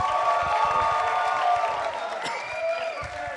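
A crowd applauds and cheers steadily at a fairly loud level, dense clapping mixed with sustained whoops and shouts, continuing throughout without any clear speech.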